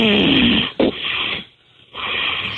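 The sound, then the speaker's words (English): A sleeping person snores in a loud, rasping drawn-out breath, goes quiet for a brief moment, then begins another raspy snore, with no talking. “And that was a real snore.”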